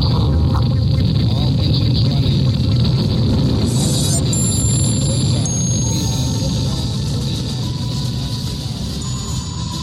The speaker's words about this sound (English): 10, 9, we have ignition sequence start. Engines on, 5, 4, 3.